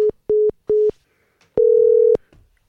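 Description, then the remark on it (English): Three short, evenly spaced beeps from a cell phone as a call drops, followed by a longer steady tone like a dial tone; clear, with no voices. “My cell phone literally said, well, you're done talking. Click.”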